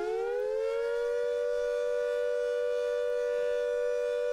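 A town siren for volunteer firefighters in Portobello, ear-splittingly loud in real life, sounds its long steady tone, rising briefly at the start and then holding at a constant pitch, rich in harmonics, with no voices present.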